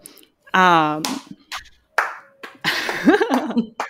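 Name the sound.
one person clapping hands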